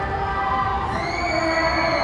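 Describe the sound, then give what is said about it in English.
A large crowd at KCON, a K-pop convention, cheers and shouts continuously, with high-pitched screams and whoops rising over a steady roar, loud and sustained throughout with no individual speech standing out. “You're hearing all of the excitement happening.”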